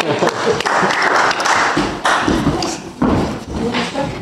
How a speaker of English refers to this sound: We usually give the kids a clap. Let's give our friends a clap, shall we? Well done.